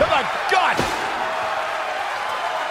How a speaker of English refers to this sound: Fall away slam on Ahsoka by the champion.